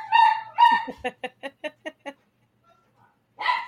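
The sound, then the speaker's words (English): Excited dogs barking: two longer, high-pitched barks followed by a quick rhythmic run of about eight sharp yips, a brief pause, then another loud bark. “Well, they are really excited too. let me try to text my son to come get the dogs.”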